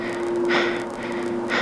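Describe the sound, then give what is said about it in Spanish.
Two heavy breaths, an inhale and a longer exhale, come through a thin, hissy radio line with a steady electrical hum underneath. Nobody speaks. “No hubo respuesta, solo su respiración.”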